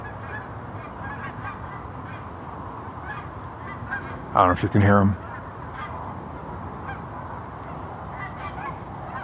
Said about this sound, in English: They're almost organized, which is why they're so quiet. There's a lot of geese up there. There are a lot of geese. But because they're almost organized, they don't need to honk as much.